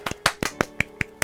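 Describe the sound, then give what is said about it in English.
Light, quick pats of a man patting his chest, with a little clapping, roughly seven sharp taps in a steady, even rhythm, each one crisp and brief, with no voices over them. “That's clapping a little bit. Oh, he's patting himself on the back. He's patting his chest.”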